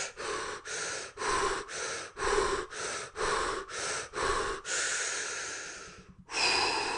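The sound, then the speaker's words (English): Quick, forceful breaths pushed in and out through the nose in a steady rhythm, about nine sharp rounds, then a longer drawn breath, a brief pause and one more strong breath, demonstrating a breathing exercise. Loud, no talking. “So it was basically this. It was like in, out.”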